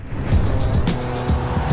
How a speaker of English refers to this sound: The truck rolled up on Rabbit fast, just like the Jump Out Boys from 17th and High Grove.